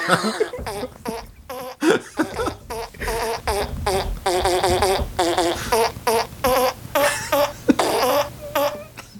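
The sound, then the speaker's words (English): A voice blows a rapid string of buzzy, pitched mouth-fart noises as a fart piano solo in a song, rising and falling like a melody, fairly loud, with brief gaps between bursts and no talking. “Yeah, I've been thinking about doing a right in the middle, like right after the first bridge, doing like a fart piano solo.”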